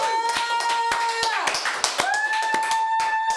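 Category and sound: crowd, hand clapping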